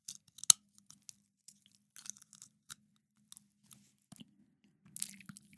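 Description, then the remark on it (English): Clear dental aligners clicking into place: a series of small, sharp plastic snaps and wet mouth sounds, irregular, over about five seconds with no talking. “But the sound you're about to hear is me clicking these clear aligners into place.”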